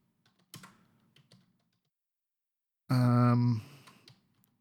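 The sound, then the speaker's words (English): Soft, quick keyboard clicks tap in a short irregular flurry, fairly faint, as someone types to look up a name, followed after a pause by a brief loud voiced sound. “Yeah, don't worry, we can hear you typing.”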